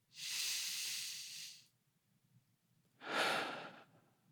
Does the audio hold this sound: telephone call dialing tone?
no